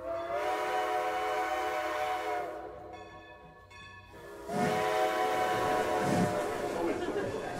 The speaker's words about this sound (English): The locomotive engine hisses, blasting clouds of steam across the station platform.